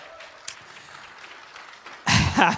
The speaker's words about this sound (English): All right, come on, you can give the Lord a hand clap of praise. Come on.